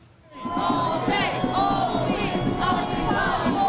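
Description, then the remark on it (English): A large, dense crowd of thousands of protest demonstrators, including marching union workers, in Manhattan's financial district roars and shouts continuously, many voices overlapping with occasional louder whoops and chants, loud after a brief quieter start. “It is a crowd that grows daily in size and diversity.”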